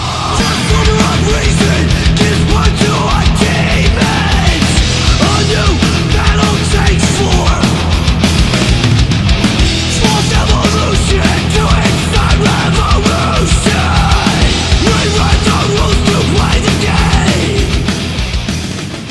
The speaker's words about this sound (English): It's got some great guttural screams to go with the low guitar tones, and the thrash is just insane on this. Perfection, some would say.